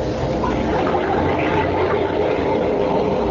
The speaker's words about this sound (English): Those are waves of the Mediterranean caressing the shores of romantic Mallorca